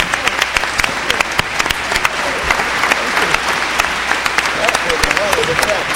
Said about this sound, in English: Before everyone leaves, please let's give another round of applause to the Hip Hop Arts and Life and for those people that have helped make this possible.